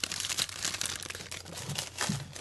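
Holiday-themed beige wrapping paper printed with presents crinkles and tears as a gift is opened, in a steady, busy stream of rustling and ripping, with no talking over it.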